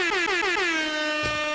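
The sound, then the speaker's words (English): A loud, blaring air horn sounds in a rapid series of short pulsing blasts that merge into one sustained, droning honk, with a sharp burst near the end. “Had to do the air horn.”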